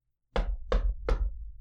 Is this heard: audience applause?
no